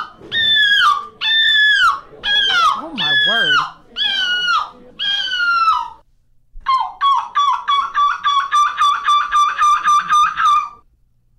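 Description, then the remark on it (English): A group of people imitate birds, with no real birds present: about six loud, drawn-out gull-like screeching calls, a short pause, then a rapid run of over a dozen clucking notes, all harsh. “By the way, what you're about to hear, there are no birds in this clip. Absolutely no birds, just a bunch of people clucking and gulling and screeching.”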